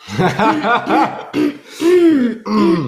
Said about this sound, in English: Yeah, me always having to clear my throat.